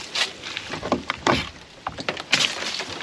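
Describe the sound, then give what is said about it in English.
A shed door, held together with a bungee cord, is pulled open with a series of uneven scraping, rattling bumps over a few seconds and no one speaking. “I held my shed door together with a bungee cord.”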